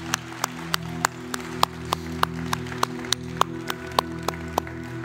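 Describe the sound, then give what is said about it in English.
An audience claps in praise to God during a church service, a steady, even rhythm of sharp regular claps about three per second, over a sustained low musical drone with no talking. “Let's give our great, great God a hand clap of praise.”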